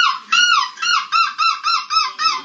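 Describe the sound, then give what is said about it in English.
A man from the Netherlands imitates a seagull's screech, his winning entry at the European Gull Screeching Championship in Belgium: a long opening cry followed by about six quick, shrill, rising-and-falling calls in a steady rhythm, loud and nasal, with no other sounds. “This man from the Netherlands walked away with a title, and this is his winning seagull screech.”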